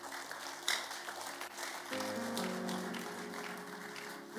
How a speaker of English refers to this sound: You see, you can clap.